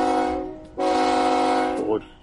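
train horn sound effect

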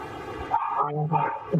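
dog barking

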